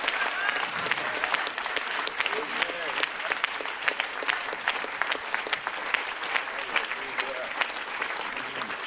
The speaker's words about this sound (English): Look at your clapping.